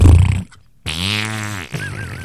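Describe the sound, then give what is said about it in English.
A loud fart: a short low rumble, a brief pause, then a long buzzy blast that drops in pitch and ends in a thin, wavering squeak. “The only problem with the pads are, it stops the smell, but sometimes it won't cut out the sound. It's not like every fart I have is a silent but deadly.”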